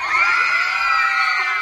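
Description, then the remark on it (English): A crowd in a film scene screams excitedly as the character Johnny Fontaine shows up, a dense wall of high, overlapping shrieks and cheers sustained at steady loudness throughout, energetic with no clear talking. “and then we get screams because who is showing up but Johnny Fontaine?”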